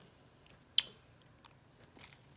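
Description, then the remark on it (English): A sharp crunch as someone bites into hard sour candy, followed by a few softer, scattered crackles of chewing, with no talking. “Give them the crunch, baby. Give them the crunch. Crunch it up.”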